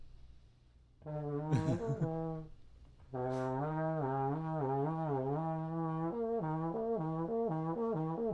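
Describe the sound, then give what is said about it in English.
A low brass instrument plays lip slurs, sliding smoothly up and down between sustained, buzzy notes after a brief wobbling, breathy start. The playing is steady and fairly loud, with no talking. “So, can you do like lip slurs on that?”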